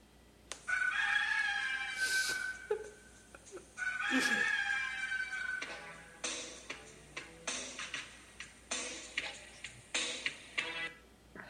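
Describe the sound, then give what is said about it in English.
A rooster crows loudly twice, each call long and strained, followed by a steady run of sharp, clucking ticks in a regular rhythm. No one speaks. “The Rooster, also known as Terry Taylor.”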